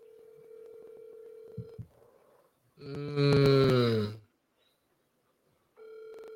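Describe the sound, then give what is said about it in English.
A phone call being placed: a steady electronic tone with a couple of clicks, then a loud, bright ringing burst lasting over a second, and the tone returning briefly at the end. No one speaks. “Just phone the brother now, Tun. Well, I'm phoning him.”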